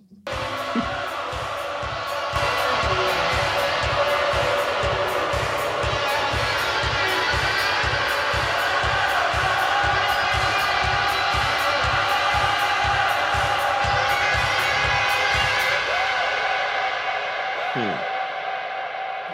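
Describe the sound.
A loud rock track with a steady, pounding beat and a crowd of voices chanting together in rhythm, building continuously for about fifteen seconds before a sustained tone lingers at the end.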